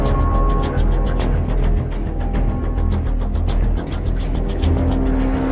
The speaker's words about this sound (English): There's a car chasing me down a bridge trying to kill me.